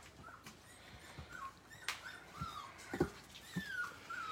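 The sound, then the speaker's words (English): European Golden Retriever puppies whimpering and squeaking in short, high-pitched bursts, with scattered soft thumps and shuffling, all fairly quiet. “These are European Golden Retrievers, European Lions.”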